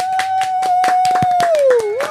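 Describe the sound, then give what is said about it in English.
Loud, irregular hand claps burst out over a sustained, whistle-like tone that holds steady and then slides down in pitch near the end before rising again. No one speaks. “Hold your applause.”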